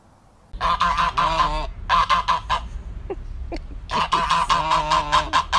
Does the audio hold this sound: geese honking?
yes